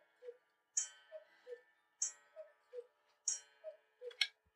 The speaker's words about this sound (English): So it's 5 o'clock and it cuckooed 5 times. So you know what time it is without even looking at it.